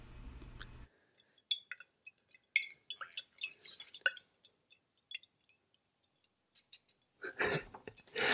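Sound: water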